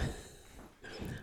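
Heavy breathing right against the microphone, a long rough exhale followed by a brief pause and another breathy gust, with no talking.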